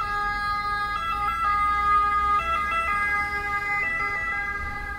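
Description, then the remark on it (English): An ambulance siren wails steadily on a street in Rome, Italy, its bright pitched tones holding and shifting over a low rumble of street traffic, with no one speaking. “There's nothing to kill a punchline like a Roman ambulance.”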